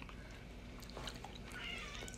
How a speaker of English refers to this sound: This is our cat. She says hello. She says, what the fuck you guys doing?